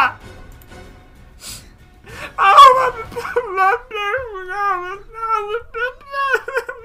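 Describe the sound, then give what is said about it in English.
A person's voice mimics the shriek of Petunia: after a quiet start, a loud, high, quavering wail with wobbling pitch rises and falls in uneven pulses for several seconds. “You hear a shriek of Petunia!”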